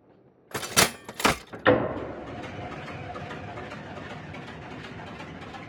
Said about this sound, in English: Okay, what type of train is this one? This here is a tunneling train. These are built with a thicker steel alloy and a more powerful engine, meant to stand the harsh environment and danger below.